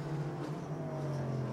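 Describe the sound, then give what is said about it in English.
A Paul Miller Racing BMW M4 GT3 race car, the number 1 car, driven out of the pit lane by Madison Snow on a fine afternoon (14°C air, 39°C track), holds a steady, low droning hum at moderate revs, continuous, with no voices over it. “Madison Snow's taking the Paul Miller Motorsport, Paul Miller Racing BMW M4 GT3 out of the pit lane.”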